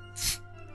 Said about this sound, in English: You look in the bottle, it looks like this bottle is full of nothing but water, but it is tasty, tasty Crystal Pepsi. Let's crack open the bottle, shall we?